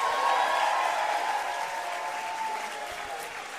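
A crowd breaks into loud, sustained applause mixed with cheers and whoops, a dense steady roar of clapping that eases only slightly over a few seconds.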